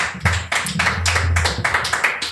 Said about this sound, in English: Well, I moved out of Idaho, so that's exciting. Guys, nice. Round of applause for moving out of Idaho. Sweet.